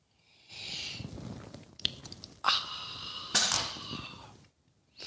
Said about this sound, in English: Fill it with your favorite liquid. I like coffee. And join me now for the unparalleled pleasure, the dopamine hit of the day. The thing that makes everything better. Everything. It's called the simultaneous sip. It's going to happen now. Go.